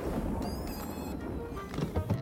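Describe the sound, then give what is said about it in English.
A rumbling crash of thunder from a storm cloud over the Astral Observatory in Pflugerville, with an odd synthetic, mechanical edge, thin metallic tones whining above the low roar before a couple of heavier thuds near the end. “Is that just me, or did that thunder sound awfully robotic?”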